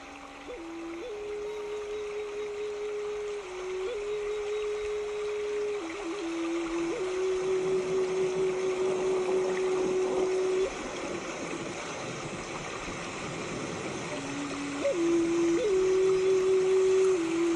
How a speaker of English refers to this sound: You can feel the water rushing through the streams, passing over the pebbles beneath it, persevering through any obstacles that are in its path.